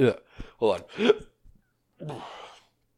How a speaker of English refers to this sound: I had to burp.